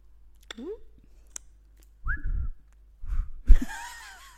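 Someone attempts to whistle, producing a few short, breathy, wavering tones with rising and sliding pitch, broken up by puffs of air and pauses, and never settling into a clear note.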